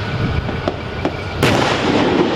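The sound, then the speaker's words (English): Machine gun fire from Cloud Leopard armored vehicles firing T-74 machine guns during a military exercise: a few sharp, irregular cracks over a steady rumbling roar, the last shot loudest and followed by a heavier, sustained wash of noise. “Cloud Leopard armored vehicles take position and spray fire gun from T-74 machine guns.”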